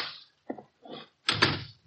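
A door is pulled shut: a few soft rattles and handle clicks, then a fuller, heavier thump as it closes, with no voices.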